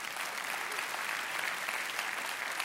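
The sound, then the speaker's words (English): A crowd claps steadily for a few seconds, a dense, even patter of many hands with no pauses or swells, loud and sustained throughout. “No, you look at me. You should clap.”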